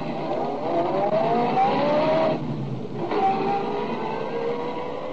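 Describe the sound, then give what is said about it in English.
A car engine revs and accelerates steadily as the car drives off, with a brief dip partway through like a gear change before it picks up again. The sound is fairly loud, with no voices. “Then I staggered over to my car, got in, and drove off.”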